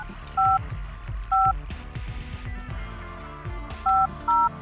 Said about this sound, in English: And this phone is a weird... Your call cannot be completed as... If you don't dial it fast enough, it won't do it.